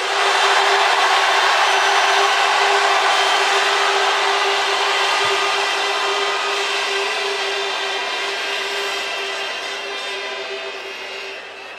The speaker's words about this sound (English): And last but not least, if you want … to win this round, on the count of three, scream, one, two, three.